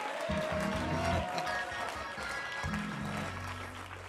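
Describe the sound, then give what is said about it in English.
An audience claps their hands unto the Lord in a steady, dense wash of applause lasting several seconds, with low sustained musical notes sounding underneath. “If you feel that, I want you to clap your hands one more time unto the Lord.”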